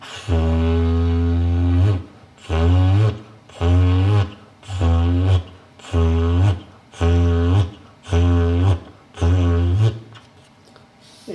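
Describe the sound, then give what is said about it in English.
A loud, buzzy lip raspberry (Bronx cheer) blown through a cardboard tube roll from a box of aluminum foil: one long honk followed by about seven shorter, evenly spaced blasts, each a low, growling, horn-like drone. “I'm going to emit a sort of Bronx cheer or raspberry, bust my lips into the tube.”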